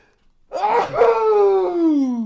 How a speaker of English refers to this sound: Ooh, I got a sneeze coming.